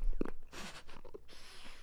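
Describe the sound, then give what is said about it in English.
Someone chews a crunchy vegan cookie made with vegan chocolate and vegan butter, tasted plain before dipping in oat milk, with a few irregular crisp, crackling bites and crumbly grinding in between. The crunching is fairly soft and there is no talking. “I'm going to taste it plain before I dip it. Oh, God. It's crunchy.”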